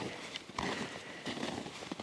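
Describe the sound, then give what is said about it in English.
Crunching footsteps on hard, icy snow, a few steps with gritty, crackling texture in an uneven walking rhythm. “And there's icy snow”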